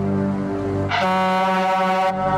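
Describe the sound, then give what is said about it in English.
A sudden, loud air horn blares for about a second over a low, steady droning rumble, cutting off abruptly as the deep drone continues; a jump-scare sound in a movie. “King always has a good air horn in his movies.”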